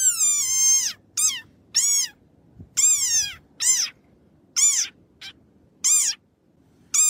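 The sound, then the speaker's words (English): An angry desert rain frog squeaks about eight times, each call a shrill, squeaky-toy-like bleat. The calls come loud in an uneven series with short pauses between them, and no one speaks. “Here's a desert rain frog when it's angry.”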